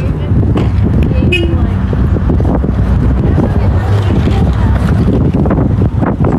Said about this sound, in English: Over to the Licbo. It is windy at the Licbo. And our horns beeping.